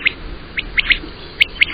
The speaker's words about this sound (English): And then this is a quail, which is also a kind of bird.